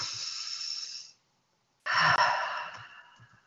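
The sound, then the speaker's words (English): A person takes two long, deep breaths through the nose during a centering exercise, a slow airy inhale, a brief pause, then a fuller, louder exhale that tapers off, alone with no talking. “So I'm just going to ask that you just maybe close your eyes and connect with your breath, breathing in and out through your nose as deeply as you can.”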